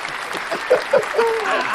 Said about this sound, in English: They get hand claps and shit.